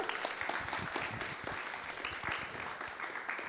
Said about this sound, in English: So that's your opportunity for another clap.